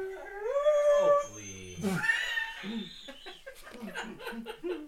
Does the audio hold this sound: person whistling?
no